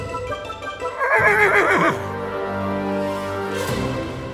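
A horse lets out a loud, quavering whinny, its trembling pitch rising and falling, then trailing into lower, steadier neighing sounds for a few more seconds.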